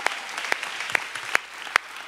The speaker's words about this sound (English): Come on, keep clapping for Jesus.